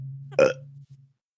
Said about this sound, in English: I did just eat dinner. I'm in the middle of digesting. So you don't hear me belching up a storm.